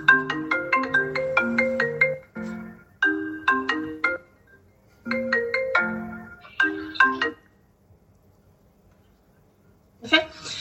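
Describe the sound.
A melodic phone ringtone plays through a laptop while the phone is on silent, in repeated bright bursts of quick tones, pausing and restarting, with a faint voice briefly audible in a gap and the tune starting again at the end.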